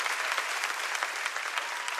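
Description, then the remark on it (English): A church audience claps together in praise of God, a dense, sustained wave of applause, many hands striking at once with a steady, bright patter without pause. “Everybody give God a clap of praise because he's already done, gone before your battles.”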